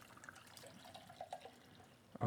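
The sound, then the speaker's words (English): A can of nitro beer being poured straight down into the center of a glass: a quiet, steady trickle of liquid with soft gurgles and splashes, ending in a sudden louder clatter. “All right, I'm going to pour it straight down in the center.”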